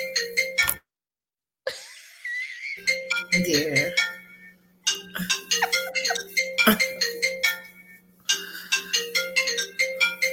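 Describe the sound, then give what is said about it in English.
A phone ringtone plays a repeating, bright melodic pattern in quick bursts, with brief gaps between phrases, clear, with a constant low hum underneath. “I hear a phone ring.”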